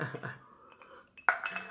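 Ice cubes clink and rattle against a glass, a soft shuffle first, then a sharp bright clink followed by a brief jingling ring.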